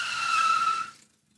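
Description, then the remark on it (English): A sharp, high-pitched tire screech from a motorcycle skidding out on a highway after hitting a patch of sand, holding steady for just under a second before quickly dying away into silence. No voices are heard. “He was driving to work when a man on a motorcycle hit a patch of sand and skidded out on the highway in front of him.”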